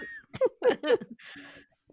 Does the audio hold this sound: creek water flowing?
no